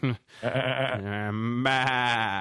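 A sheep bleats loudly: a short cry, then a long, wavering, nasal baa that shifts pitch partway through. No voices are heard.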